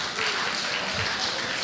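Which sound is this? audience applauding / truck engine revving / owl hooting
audience applauding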